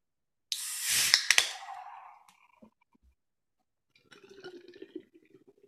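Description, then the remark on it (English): A nitro ale is poured straight into a glass: a loud rushing, hissing gush for about a second, then quiet fizzing and soft bubbling as the beer settles. “I know people love a pour, but this is an ale, not a stout, so you can just throw it in the glass.”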